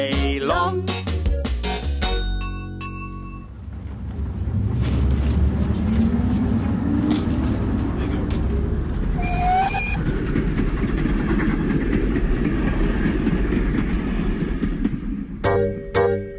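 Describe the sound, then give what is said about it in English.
A steam train chugs steadily along the rails with a loud, continuous rumbling clatter, a short whistle cutting through midway, and brief tonal bursts at the start and end. “Down at the station early in the morning, see all the puffer trains standing in a row.”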